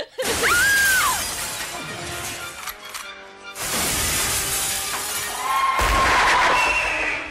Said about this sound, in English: Then the Carnosaur burst through the window.